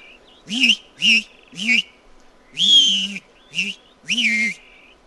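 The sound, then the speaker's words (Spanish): A plumbeous rail calls in a loud series of six harsh, wavering hoots, each a short burst with brief pauses between, the middle and last notes drawn out longer. “El canto retumbante del pidén.”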